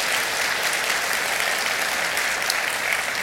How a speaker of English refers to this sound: So one of the things I want to point out here is that the SEG Foundation immediately stepped up and has made a $100,000 donation to Harvey Relief Charity. So let's have a round of applause for the SEG Foundation.